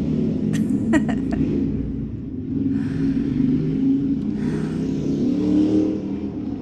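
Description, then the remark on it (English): Deep engine rumble from motorcycles passing outside, a steady low roar that swells and fades over several seconds, muffled as if heard through a wall or window, with a few brief clicks near the start. “And because we record this podcast in the real world at the moment, there are all of these amazing motorcycles going by outside.”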